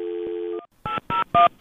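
A steady electronic tone is followed by four short, evenly spaced beeps of telephone keypad dialing as someone calls their father, each a bright two-pitched DTMF tone, fairly loud with brief gaps between them.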